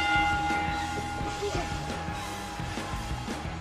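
bell ringing

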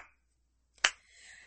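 slow clap

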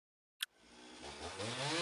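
chainsaw revving

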